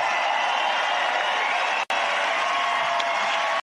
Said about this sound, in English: So, obviously, a very enthusiastic crowd. I'm from Iowa, and so this is Trump country.